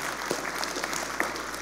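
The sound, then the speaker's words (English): An audience claps together in a dense, steady burst of applause, many hands blending into a continuous crackling wash with a few sharper claps standing out. “Yeah, let's clap to that.”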